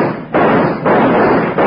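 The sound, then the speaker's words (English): Three loud, sharp gunshots ring out about half a second apart during a shootout around a wagon, each followed by a long, noisy echo that fills the gap before the next blast; no one speaks. “We both got slugs in us.”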